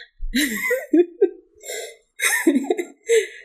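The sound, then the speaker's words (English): A voice imitates a series of small, cute sneezes: about five short, high-pitched squeaky bursts in an uneven rhythm, each breathy and clipped, with brief gaps between them. “So an 18 and a 19, you're both able to shrug it off, and one of you gives a very cute sneeze.”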